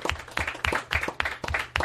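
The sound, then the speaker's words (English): Applause from a group of people, a steady stream of sharp, rhythmic claps at moderate volume, with no talking over it. “Applause is, you know what, I love that even everyone applauded, because, you know, not only was that heartwarming, like I wanted it to be, but it's harder to do.”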